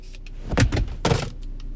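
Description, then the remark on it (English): A Game Boy handheld game console is thrown across a car, landing with two quick clattering knocks against the interior over a low engine hum, with no one talking. “I just threw my Game Boy across the car.”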